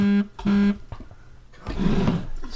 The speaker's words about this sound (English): Vibrating ass phone. Everybody wants to send me in a group chat.